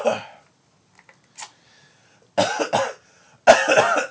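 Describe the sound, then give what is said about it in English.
Several harsh, breathy coughs into a video game cartridge to get it working: one short burst, a faint puff, then two longer raspy bursts separated by brief pauses. No talking. “Did you cough into both? All the tops and all the bottoms?”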